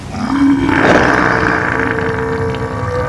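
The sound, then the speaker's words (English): A loud, comical noise made by a giant octopus, part snort, sneeze, burp and fart at once: a harsh, rumbling blast with a low droning tone that holds steady for about three seconds, with no talking. “It was a snort. A sneeze, a burp, and a fart all at once. That was the sound the giant octopus was making.”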